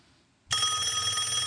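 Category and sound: household object, telephone bell ringing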